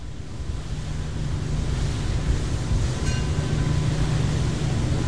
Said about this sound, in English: We're on a small boat motoring across the Panama Canal.